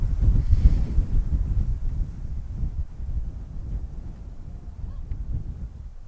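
Low, rumbling wind buffets a microphone fitted with a furry windscreen while recording outdoors on a windy day, with loud gusts early on that settle into a steadier, softer roar. No voices are heard.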